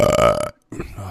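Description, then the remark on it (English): A loud, drawn-out burp with a deep, buzzing tone lasts about half a second, then after a short silence a voice starts talking. “Oh, that was Death Star burp.”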